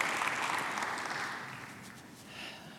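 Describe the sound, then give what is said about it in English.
A crowd applauds steadily to honour a woman who helps widows, many hands clapping in a dense, continuous wash that gradually tapers off in volume. “We're clapping for her.”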